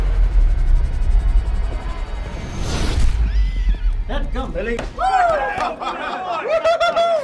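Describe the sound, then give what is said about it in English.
Horses whinny loudly several times in quick succession, high wavering neighs overlapping one another, as Indian riders unnerved by a long-distance rifle shot whirl their horses about and gallop off, following a brief rushing burst of noise over a low, rumbling background. “The other Indians are so unnerved by the long-distance shot, they whirl their horses about and gallop off.”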